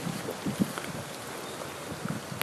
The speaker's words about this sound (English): The rain's starting to get a bit stronger now.